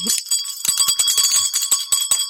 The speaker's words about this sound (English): Yes, ring the bell.